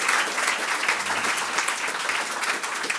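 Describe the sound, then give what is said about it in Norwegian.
A crowd applauds steadily as researchers are called up onto a stage, a dense wash of many hands clapping at once, fairly loud and continuous throughout with no voices standing out. “Ja, klapp I vei!”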